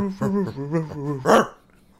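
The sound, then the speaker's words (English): A person growls and barks in imitation of an old, rabid dog: a few rough, voiced, hoarse and snarling bursts in quick succession ending in a raspy, breathy bark. “Callback dog sounds so old. He's rabid now.”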